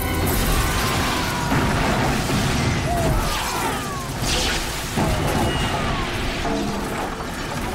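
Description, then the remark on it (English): A huge movie explosion from a bomb roars loudly and continuously, a dense rumbling blast mixed with crashing and shattering debris, as a house is obliterated and a cop car and cops go flying, filling the whole stretch without letting up. “we get cut to Danny watching the movie, and there's this huge explosion”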